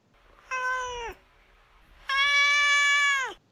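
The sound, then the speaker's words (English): A pet cat named Duarte meows twice, clear: a short meow, a brief pause, then a longer, louder one, each trailing downward in pitch at the end. No one speaks. “All right, now it's time for Duarte's Corner, where my cat Duarte gets to share his opinions on the book.”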